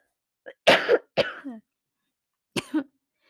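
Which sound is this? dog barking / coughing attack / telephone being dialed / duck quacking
coughing attack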